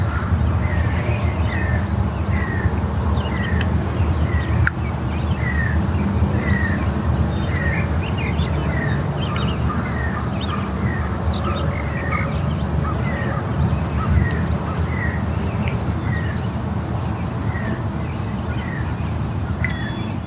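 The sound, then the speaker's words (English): A dawn chorus: many birds sing and call together in a busy outdoor chorus, with repeated chirping phrases layered over a steady low ambient rumble, continuous and fairly loud throughout. “Perhaps the dawn chorus of our bird relations is a song of gratitude.”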